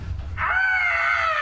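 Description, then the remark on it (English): A low rumble gives way to a single loud, sustained shrill screech, bird-like and monstrous, with a raspy, hissing edge that holds steady to the end. No one speaks. “You hear a bird-like screech, and then a snake-like hiss.”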